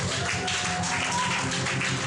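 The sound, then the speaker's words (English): An audience claps together in a dense, steady wash of overlapping hand claps that holds at an even, fairly loud level for the full two seconds. “I didn't say you should clap, but if you want to clap, clap very well.”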